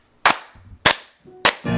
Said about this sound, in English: Can you guys clap?